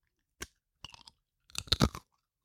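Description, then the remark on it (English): A square cracker with herbs and spices is bitten and chewed: a sharp snap, a couple of smaller crackling crunches, then a dense burst of loud crisp chewing before it stops. “Wow, that sounds crunchy.”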